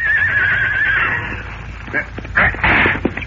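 A horse whinnies loudly, a high wavering cry that trails off, followed by a few sharp snorting bursts and some shuffling noise, as riders prepare to mount and escort a wagon.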